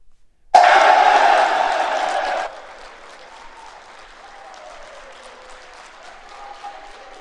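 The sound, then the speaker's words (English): A sudden burst of loud crowd applause and cheering, in reaction to the announcement that U.S. Merchant Marine Academy will visit Washington and Jefferson in the James Lina Bowl, lasts about two seconds, then drops to a softer murmur of crowd noise with faint voices underneath. “Let's see if there's any reaction from the crowd out there.”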